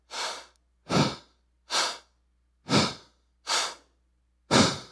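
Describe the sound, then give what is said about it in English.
A voice imitates heavy, labored breathing, as of David waxing faint in battle against the Philistine Ishbi-Benob. Six loud breaths come in a steady rhythm, each a rough rushing huff of air with short silent gaps between, and no speech. “He's breathing hard.”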